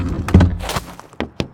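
A van's side door slides open: a heavy thunk, a brief rolling scrape along its track, then two sharp metallic clunks as it reaches the end, with no voices.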